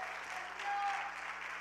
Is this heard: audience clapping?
yes